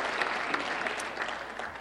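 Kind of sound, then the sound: crowd, audience applause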